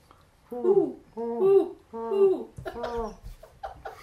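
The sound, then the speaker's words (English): A person imitates an owl with three drawn-out vocal hoots in a steady rhythm, fairly loud, followed by a brief burst of voices and laughter. “It's not an owl. It's gonna be an owl.”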